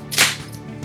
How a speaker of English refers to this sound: All right, and then I'll count down and we'll do the clap. And 3, 2, 1.